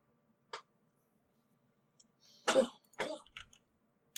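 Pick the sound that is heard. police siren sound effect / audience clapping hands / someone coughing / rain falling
someone coughing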